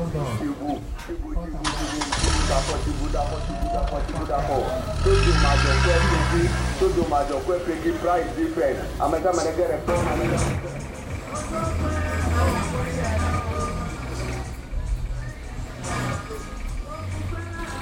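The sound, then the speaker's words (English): A car's engine cranks and turns over as the driver starts the ignition at a lorry station, then settles into a steady low idle with a rising rev around the middle, while voices chatter in the background throughout. “With how simple a road journey from the lorry station can be, we'll just need to buy a ticket, get onto the car, and hope the driver starts the ignition.”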